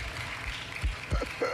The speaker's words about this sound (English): I'll take those claps.